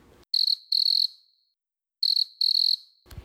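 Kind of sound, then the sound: insect, cricket chirping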